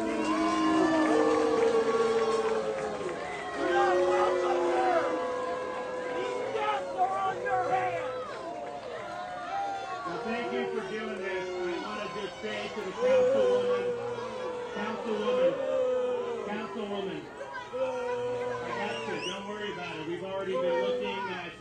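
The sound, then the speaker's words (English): A large crowd boos Florida Governor Ron DeSantis loudly and steadily, many overlapping voices forming long, sliding tones that swell and dip for about twenty seconds, with chatter mixed in. “All these people that are booing here is going to vote left.”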